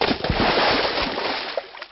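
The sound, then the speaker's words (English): A teenager's body falls heavily into water: a loud burst of churning, sloshing noise that carries on for about two seconds with several sharp slaps inside it before easing off slightly. “frame connected with the water and spawned an impact similar to a sack of bricks being tossed into a shallow pond.”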